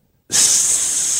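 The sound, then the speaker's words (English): A loud, steady hiss like air escaping from a punctured tire bursts in after a brief silence and holds at a constant high, airy pitch until the end. “He noticed a hissing sound coming from down below. Like a tire with a hole in it?”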